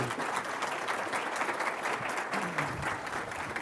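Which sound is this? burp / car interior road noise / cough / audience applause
audience applause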